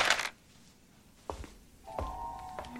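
A woman drops dice onto a game board in a few separate knocks: a sharp burst, a lone thunk, then another hit followed by a brief ringing tone. No one speaks.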